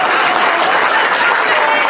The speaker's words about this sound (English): So if I could have a round of applause for the board of directors.